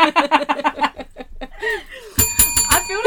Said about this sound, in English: I love the bell. She loves the bell. That's going to stay.